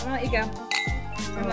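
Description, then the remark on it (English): Glasses clink together in a toast, a couple of bright ringing taps, with voices murmuring underneath. “That was a good cheers.”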